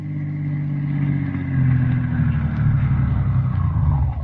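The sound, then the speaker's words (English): The engine of Dr. Christian's car rumbles, its low drone swelling slightly as it draws up in front of Windy Smith's house in River's End, then settling into a steady idle before cutting off at the very end. No voices are heard. “As the scene opens, we find Dr. Christian and Roy Davis, the druggist, in the doctor's car drawing up in front of Windy Smith's house.”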